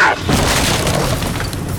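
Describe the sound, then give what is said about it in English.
A loud, heavy crash as the door of a daimyo's chambers in a palace is ripped off its hinges, a deep booming burst followed by a sustained rumbling, splintering clatter that holds steady and then stops abruptly, with no voices. “She finally arrived at the daimyo's chambers and ripped the door off its hinges.”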